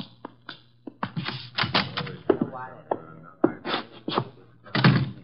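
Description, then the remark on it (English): A door is opened: a run of sharp clicks, knocks and hollow thumps from the latch and handle, with a brief murmur of voice partway through. “The door, Chuck.”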